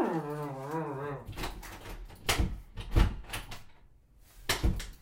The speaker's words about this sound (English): The door, it's a pull. It's a pull door, not a push. Pull.